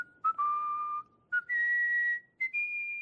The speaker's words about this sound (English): He placed his hands behind his back. He began whistling.